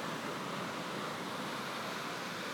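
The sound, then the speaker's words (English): A steady, full roar of surf washing onto the shore, continuous with no distinct individual breaks, fairly loud, with no voices. “Wow, we have consistent waves, ladies and gentlemen.”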